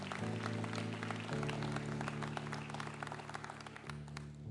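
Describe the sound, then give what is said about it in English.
A crowd claps steadily in a dense, crackling patter throughout, over sustained low keyboard or organ chords that shift a few times underneath. “You can clap for that, absolutely.”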